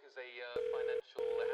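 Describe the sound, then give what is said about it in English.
A telephone ringing tone purrs through the line in two steady bursts with a short gap between them as a call is placed to John Crespin, a scout, while a muffled voice and background sound murmur underneath. “John Crespin on the phone.”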